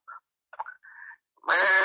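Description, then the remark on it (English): A person imitates a sheep's bleat: a few short, nasal vocal bursts, then a loud, sustained, wavering 'baa' that carries to the end. “Tiger? Sheep, actually.”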